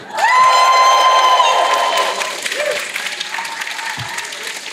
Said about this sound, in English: being recorded live from the Voyager stage here at Destination Star Trek London today, which is Friday, the 12th of November, 2021. And we've got a whole audience in front of us. Can we get you guys to say hello to everyone? Give us a big cheer.